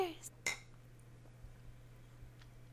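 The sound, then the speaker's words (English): Glasses clink together in a toast before a first sip, a bright tap with a short ringing tone, preceded by a lighter touch, then only a low steady hum. “Well, how about a glorious first sip instead? Yeah. Cheers.”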